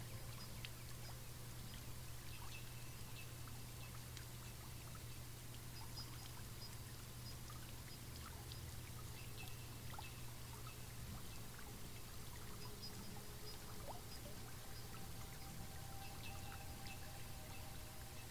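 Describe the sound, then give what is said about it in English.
Water trickles and pours steadily into a shallow spring-fed pond beneath a towering rock, a soft continuous burble with a low background hum and no voices, the flow never pausing. “You walk over to the towering rock, and underneath it is a shallow spring-fed pond.”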